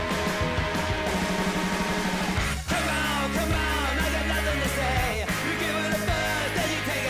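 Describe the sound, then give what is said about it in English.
A loud, dense lo-fi music track from a 2014 EP, with a raw, screaming vocal over heavy bass and distorted instruments, briefly cutting out for a split second midway before crashing back in. “When he screams and the music stops, I loved it.”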